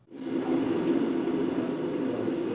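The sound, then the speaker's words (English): A steady, low droning hum of a single-engine airplane holds at an even loudness throughout, with a dense rumbling tone and a faint airy hiss above it. It echoes through a classroom at Mount Edgecombe High School in Sitka. “That's the low hum of a single-engine airplane reverberating throughout a classroom at Mount Edgecombe High School.”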